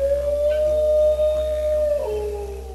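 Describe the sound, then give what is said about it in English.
A dingo gives a single long, steady howl that holds one pitch, then slides lower near the end. It is loud, with no one talking over it. “from the squeaks and grunts of the koala to the barks and howls of the dingo.”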